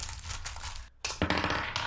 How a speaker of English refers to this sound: Oh my god. He's throwing dice, guys.